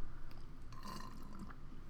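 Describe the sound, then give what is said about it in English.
A continuous wet slurp of iced coffee drunk with a lot of ice, bubbly and gurgling, with a few sharper squelchy bursts running through about two seconds; no one speaks. “Drink your iced coffee. Sorry for the slurp.”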